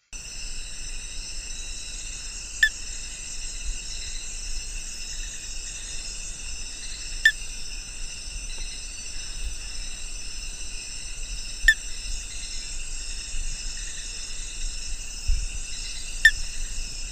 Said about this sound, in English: And we actually have one of your recordings of the frog call, and we're gonna listen to it right now.